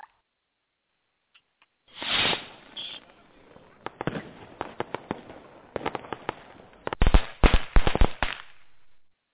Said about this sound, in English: All right, we got the firecrackers popping on this show.